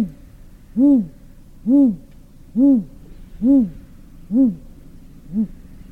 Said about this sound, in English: And it's full of magnificent forest owls.